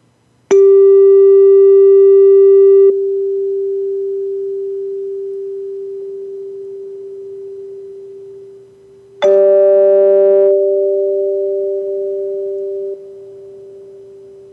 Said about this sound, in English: I have some chimes here, but I don't know if you'll be able to hear the harmonics, but I'll go ahead and play.